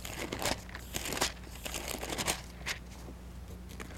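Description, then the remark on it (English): Dry paper rustling as pages are flipped to find Nehemiah chapter 4, a series of quick crinkly bursts spread irregularly over a few seconds with a faint low hum underneath and no talking. “It's good to hear paper rustle.”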